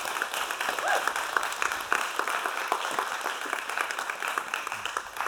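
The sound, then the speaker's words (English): Sustained applause from a sizable crowd fills the space, a dense, steady wash of many hands clapping at once with no pause for the full stretch. “I like when you clap, not because I feel good about myself, but because I get to drink water.”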